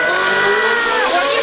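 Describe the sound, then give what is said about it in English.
A Ferrari sports car engine revs loudly, a sustained throaty roar whose pitch climbs and shifts over a second and a half, as the car sets off for the Civic Center. “You can't go slow in a Ferrari”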